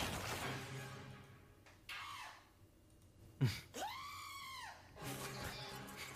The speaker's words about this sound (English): Sorry, it's so quiet, but tiny commercial. So apparently they run out of Doritos and the goat screams at the guy, so that's the deal with it.